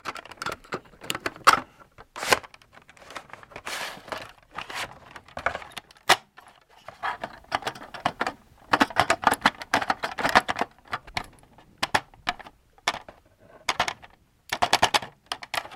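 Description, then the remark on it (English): A cassette tape being wound by hand with a pencil, heard as irregular bursts of plasticky clicking and rattling for about fifteen seconds, with no talking. “You guys ever had to take a pencil?”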